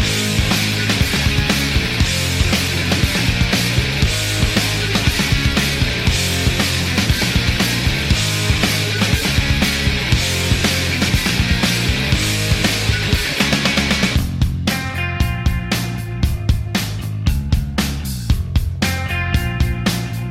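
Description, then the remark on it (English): The opening track of a 1991 grunge rock album plays loudly, with dense, distorted guitars and pounding drums, shifting around the midpoint into a sparser section with cleaner tones and sharp hits. No one speaks. “I'm going to stop it there because everyone knows this song.”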